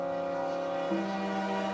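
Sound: passing train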